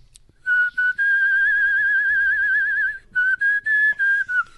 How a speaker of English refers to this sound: Who believes they are a professional standard whistler?